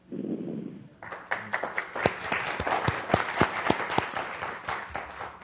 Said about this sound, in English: Hope you could hear that applause.